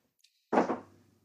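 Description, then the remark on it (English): Dice rolled on a table, landing on six: a faint tap, then a louder rattling clatter with a couple of quick bounces that fades within half a second. No voices. “Let's roll these dice.”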